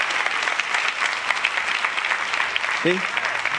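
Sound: audience clapping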